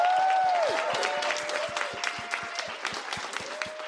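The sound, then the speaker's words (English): A crowd applauds for Dame Lily Savage in a dense, steady round of clapping that holds for several seconds, with a few sustained whoops or cheers rising above it and a regular low thump underneath. “Please, can we have a round of applause for Dame Lily Savage?”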